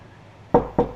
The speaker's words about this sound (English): Knock, knock, knocking on Allison's door.